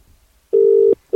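A steady electronic ringback tone of an outgoing phone call sounds loud, one long burst of about half a second, then a brief pause before the next tone begins, with no voices. The call goes unanswered to Vodafone voicemail.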